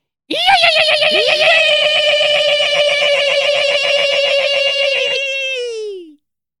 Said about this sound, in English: Wow, what an alarm. That was an aggressive one. Yeah, very aggressive.